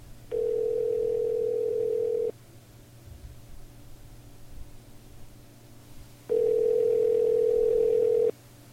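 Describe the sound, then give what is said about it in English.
A telephone line tone hums steadily for about two seconds, falls silent for roughly four, then sounds again, the pattern of a phone call being placed. Clear, with no voices. “So next, I'm going to make my next phone call.”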